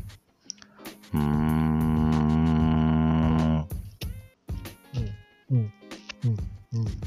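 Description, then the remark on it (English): A person hums one steady, buzzy note for about two seconds, then, while holding their nose, makes a string of short, choppy hum-like bursts with gaps between them. “So I'm going to start humming, then I will hold my nose to see if I can continue.”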